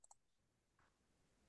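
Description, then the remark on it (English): A couple of quick, sharp clicks of dice being rolled for a resolve and stamina roll right at the start, followed by a soft, muffled rattle; quiet, with no talking. “I will say, if you guys want to roll off for it.”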